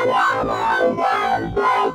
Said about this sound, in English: You can get all of those interface type sounds. And you can get all these weird sci-fi things.